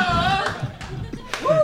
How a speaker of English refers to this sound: Oh, wow, we're getting a slow clap going here. I feel uncomfortable.